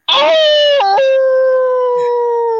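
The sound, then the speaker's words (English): A person imitates a wolf howl, one sustained, loud, wavering cry with a brief dip in pitch partway through, alone for a couple of seconds. “I can walk in the stadium howling.”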